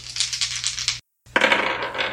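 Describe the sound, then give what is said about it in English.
Dice rattle and clatter across a table in two quick bursts separated by a brief pause, a bright tumbling of hard little cubes with no voices; the dice come up 12, 14 and 9. “Oh, I've got numbers on dice here. 12, 14, and 9.”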